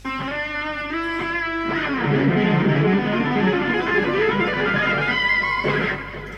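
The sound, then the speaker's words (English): A sustained, harmonically rich guitar harmony part drenched in reverb and delay, with notes smearing into long washy tails and faint repeating echoes layered together, fairly loud and continuous with no voices. “That's not just reverb, is it? That's that bit of delay there. Delay, yeah. Then playing them together.”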